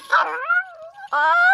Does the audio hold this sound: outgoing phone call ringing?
no